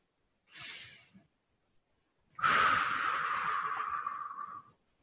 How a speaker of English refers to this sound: Okay, so let's start off with a couple nice deep breaths here, please. In through the nose and out through the mouth.